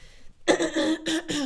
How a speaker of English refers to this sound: Let me clear my throat.